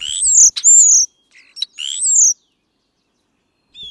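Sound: european starling calls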